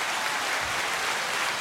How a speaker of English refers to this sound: Applause. Applause button. Clap.